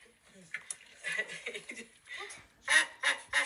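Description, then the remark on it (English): Three loud, raspy squawks from a squeezed rubber chicken toy burst out in quick succession near the end, following a stretch of people talking and laughing. “You know those chickens that you squeeze and then they make that noise like, rah, rah, rah?”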